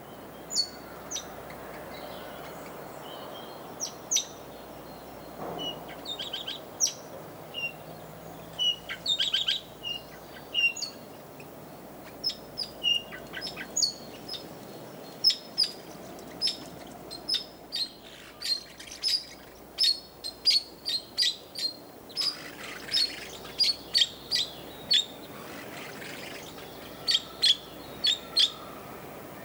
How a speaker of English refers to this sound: The parakeet's melodious tunes were recorded for the compilation CD….